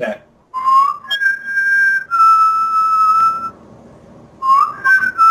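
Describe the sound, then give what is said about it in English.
A person whistles an opening theme tune, sustained pitched notes gliding and holding, with a brief pause in the middle before the melody resumes; no talking. “When I go into New York, every time I walk by the library, I start whistling that opening music.”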